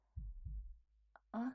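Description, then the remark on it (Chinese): A quick double thump of a heartbeat, deep and muffled, pulses twice before a brief click and a short breathy vocal sound at the end. “可是，身体怎么感觉突然好热呀？心跳也跳得好快。”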